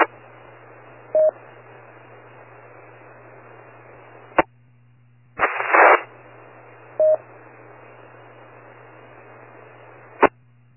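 Hissy, band-limited radio static with sharp squelch clicks, two brief tone chirps and a harsh noisy burst midway: a weak transmission from another station trying to reach a radio repeater but not quite making it, breaking up without any intelligible voice coming through.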